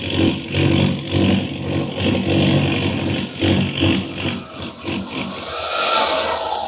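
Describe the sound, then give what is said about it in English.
An airplane engine roars loudly and continuously as the plane, out of control over the Rocky Mountains, goes into a tailspin dive, its throbbing drone surging and wavering, with a higher whine building toward the end. “Hang on! We're going into a tailspin! We're plunging down!”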